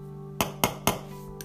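Three quick, sharp taps on a phone's real-metal back plate, which covers about three fifths of the phone, evenly spaced, then a fainter fourth tap, each a bright clicky knock over a low steady hum.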